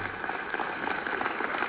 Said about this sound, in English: I thought they were just kind of taking applause breaks. Yeah, it's like going to get a little tired in between claps. Yeah, that's a weird... I don't know. Let me play it again. Maybe it was just loading or something.